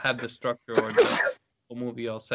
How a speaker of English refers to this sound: Bless you. Bless thy soul.